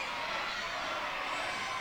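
The studio crowd of the game show Press Your Luck cheers in a steady, dense roar of many voices with no individual words, holding at an even, fairly soft level for the short stretch.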